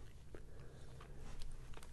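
Quiet mouth noises of one small sip of a sour, fruity drink being sloshed around the back of the mouth, with soft wet clicks and smacks scattered over a low steady rumble; no one speaks.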